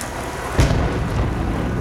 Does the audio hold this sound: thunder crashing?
yes